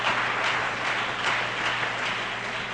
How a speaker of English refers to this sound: The church is full of good people. Amen. Amen. Good people. You ought to give yourself a hand clap on that.